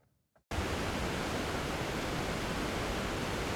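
A steady, thundering roar of Pucano Falls, a waterfall about 100 feet high in Ecuador, bursts in after a brief near-silence and holds loud and unbroken, a dense wall of rushing water, with no voices.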